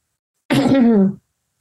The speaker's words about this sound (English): sorry, I just need to cough. Is it right if we edit this bit out?